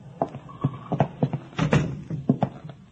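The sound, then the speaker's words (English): The door of a settlement house building being opened and closed, a series of wooden clunks, knocks and a rattling latch over a few seconds, with no one speaking. “Here, we go in this door.”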